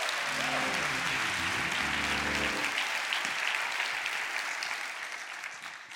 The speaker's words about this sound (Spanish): Eres hijo del Dios Altísimo. Date un aplauso. Gloria a Dios.